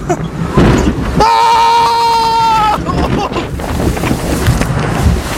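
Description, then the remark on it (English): The Viking Voyager log-flume boat ride in Kansas City plunges and splashes, with loud rushing water throughout, briefly joined by a sustained, horn-like tone that rings for a second or two before the churning continues. “But, Neverlanders, that was the Viking Voyager.”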